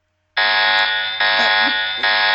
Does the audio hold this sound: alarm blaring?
yes